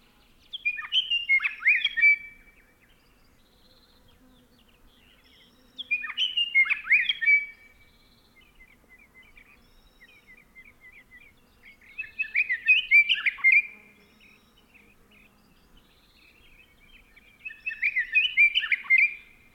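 A male Scott's Oriole sings excitedly at dawn, switching between song patterns: four bright, warbling whistled phrases about every six seconds, clear and fairly loud, with soft chatter between phrases and no talking.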